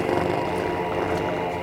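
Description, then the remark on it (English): A door-stopper spring being plucked gives a buzzy, twangy boing that rings out steadily for under two seconds, thick with wobbling overtones and holding an even loudness with no speech. “That's the sound of that little thing behind your door.”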